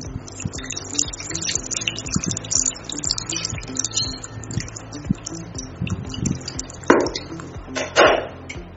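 A menthol and methanol mixture is poured into a perfume and Texapon mixture in a container, a steady trickling with light knocks and clinks, then two louder splashing gushes near the end. No one speaks.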